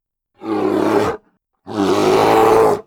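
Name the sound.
grizzly bear roaring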